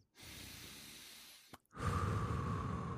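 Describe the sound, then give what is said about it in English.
Heavy, raspy Darth Vader-style breathing, like a masked villain's respirator: one long hissing inhale, a brief pause, then a louder, buzzy exhale. Sounds like a person imitating the effect, with no talking. “Yeah, it's kind of like a Darth Vader thing, I guess. Nope, that's just a breathing.”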